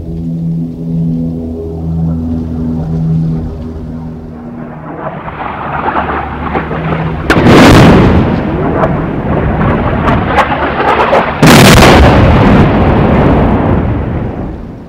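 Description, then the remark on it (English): A droning aircraft engine hums steadily, then two heavy bombs dropped from the airplane explode a few seconds apart, each a loud booming burst followed by a rumbling roar, sounds heard all over the Nuba Mountains. No voices are heard. “But they can still recognize the sound of an airplane that they've never even ridden, but they know that it bombs them.”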